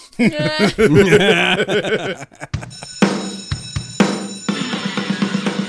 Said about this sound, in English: And the bell means the end of another class here at Video High.